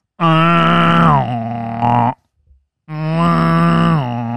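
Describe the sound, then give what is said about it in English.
A voice imitates a foghorn with two long, loud, low droning blasts, each about two seconds, the pitch sagging slightly partway through, separated by a short pause. “I wish I had that fucking foghorn sound on my podcast, on my soundboard.”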